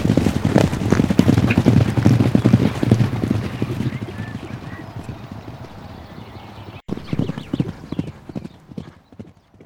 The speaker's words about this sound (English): East we must go. The horse is already known. They already start trotting in the right direction.